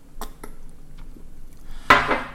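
Someone sips tea from a cup: two faint ceramic taps, a quiet pause, then a sharper clink with a brief airy slurp that fades quickly. No one speaks.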